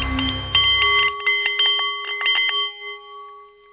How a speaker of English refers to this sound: Ladies and gentlemen, good afternoon. The Nepalese Meditation Bowl is chiming, and that means it is time for The Art of the CEO.